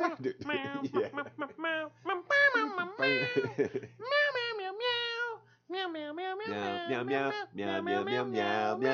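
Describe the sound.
A human voice imitates a cat, meowing in a rapid string of about seven loud, drawn-out cries with brief gaps between them.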